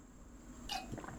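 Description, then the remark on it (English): A brief, soft slurp of someone sipping coffee, a quick wet burst followed by a faint swallow, alone over a steady low background hum. “All right, guys, one last sip of coffee for the working man.”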